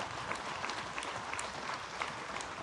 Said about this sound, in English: I'm not used to a church where people clap and some people are raising their hand.